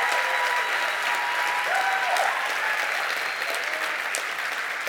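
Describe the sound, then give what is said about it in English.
Steady, sustained applause from a church audience for two church planters working in Ethiopia and Rwanda, a dense wash of clapping that holds at an even loudness for the whole stretch, with no voices standing out. “Would you put your hands together for these two today?”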